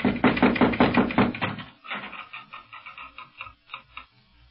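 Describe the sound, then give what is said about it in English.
A rapid series of firm knocks on the wooden door of a house on a Moorish street in Morocco, about eight sharp raps, then softer, scattered tapping and faint rustling as the sound fades. “No, but here, let me knock.”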